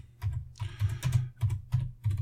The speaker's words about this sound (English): That's me typing.